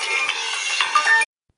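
A phone ringtone from an incoming call on the phone being used for recording: a bright, buzzy electronic tone with a few higher melodic notes, loud and steady for just over a second before cutting off abruptly into silence.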